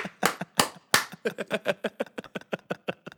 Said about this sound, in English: What song's playing in the background? No. Nothing. It's just the sound of you clapping.